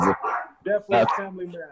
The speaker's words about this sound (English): I got a dog barking in the background